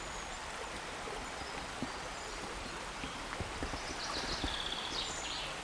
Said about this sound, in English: Now, whether this is a river or a stream is an interesting question. And one of my favourite definitions of the difference between the two is that if you can jump it, it's a stream. And if you can't, it's a river.